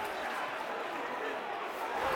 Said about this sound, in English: That's the crowd will see the Millwall tackling. Billy getting stuck in there. The crowd roaring that on. Will please the Millwall crowd. You give them some solid, hard ball tackles.